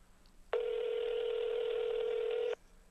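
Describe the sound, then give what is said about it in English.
A single ringback tone sounds through a phone line on an outgoing call: one steady, buzzing ring about two seconds long, fairly loud against a faint hiss, with silence before and after and no one talking. “Could you let the phone ring? I'm letting it ring. Hear it?”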